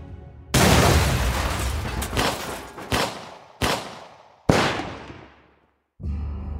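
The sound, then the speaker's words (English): A loud explosion as police blow down an apartment door roars and rumbles, followed by four sharp gunshots spaced roughly a second apart, three from a revolver and one a police rubber bullet, each ringing out and fading, with no voices. “After the explosion, it was possible to hear 4 shots.”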